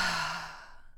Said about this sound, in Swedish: Man kan alltid behöva ta ett djupt andetag. Vi andas in genom näsan och släpper ut genom munnen.